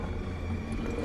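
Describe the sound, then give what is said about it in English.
A deep, rumbling Tyrannosaurus Rex roar, sustained and steady at a fairly loud level for about a second, with heavy low growling tones and no voices. “And that is the roar of a Tyrannosaurus Rex.”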